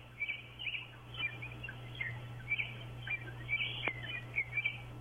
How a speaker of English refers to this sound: Yeah, what's that beautiful bird in the background? The bird sounds so cheery. Yeah, can we just listen to the bird for just a sec?